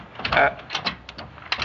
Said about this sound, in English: This old door, it's so warped. Here, let me. That's a man's job.